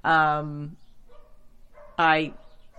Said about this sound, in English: Sorry, there's a dog barking in the neighborhood, which probably means I should shut my window, right?